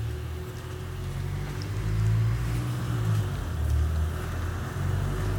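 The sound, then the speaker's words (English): Steady, loud low engine rumble from inside a bus moving quickly along a road with no traffic, with a droning hum that swells slightly and faint rattles above it, continuing throughout without any voices. “as you've probably gathered from that announcement on the bus”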